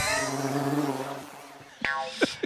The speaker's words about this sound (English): What was, wait, what happened to the bee at the end there? It sounds like he's getting swatted.